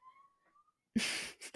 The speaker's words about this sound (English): The cat!